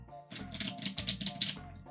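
A deck of playing cards is shuffled, a rapid fluttering riffle lasting just over a second, with a faint steady hum underneath.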